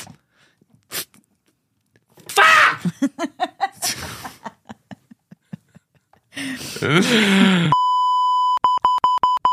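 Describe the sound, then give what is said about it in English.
Loud electronic beeping from a soundboard's "dumb button": a sustained tone that breaks into a quick string of short, evenly spaced beeps, following bursts of laughter-like vocal sounds. “It's my dumb button.”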